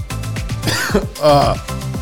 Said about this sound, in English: coughing. I don't have the cough button, sorry.